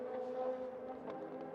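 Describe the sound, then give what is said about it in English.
The number 8 P2 sports prototype race car runs up onto the high banks of the track, its engine holding a steady, droning pitch, loud and continuous throughout with no one speaking. “Up onto the high banks again for the tower car.”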